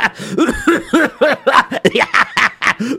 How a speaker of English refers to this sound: Well, I'm laughing so hard, I'm beginning to cough up.